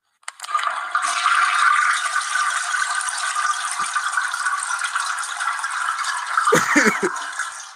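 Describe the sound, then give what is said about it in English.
A toilet flushes loudly, a steady rushing whoosh of water lasting several seconds, ending with a few gurgling clunks as it drains. No one speaks. “but what I am about to do, I'm pretty sure a lot of people are going to hate me for this, but this shit has to be flushed, man.”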